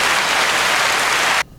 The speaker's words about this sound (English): because we have automatic applause on this cool thing.